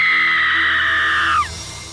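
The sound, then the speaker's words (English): A woman's loud, piercing scream in a basement holds steady for over a second, then breaks off with a sharp downward slide, leaving a faint hiss behind. “There was digging, a scream, and then a louder scream 2 minutes later.”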